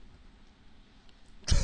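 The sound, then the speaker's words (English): After a stretch of quiet hiss, a single abrupt, loud throat clearing bursts out right at the end, harsh and brief. “Let me clear my throat.”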